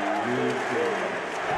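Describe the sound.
A big arena crowd at a Mavericks–Jazz basketball game chants "MVP" in unison, a dense, steady roar of many voices with rising and falling sung pitches riding on top, loud throughout.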